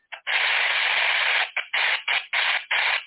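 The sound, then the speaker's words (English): A harsh, hissing radio signal switches on and off in bursts: one long stretch, then several shorter pulses, like a coded transmission made of static rather than clean tones; it resembles Morse code but decodes to nothing. “They thought it was Morse code, but when they did the Morse code, it didn't add up to anything.”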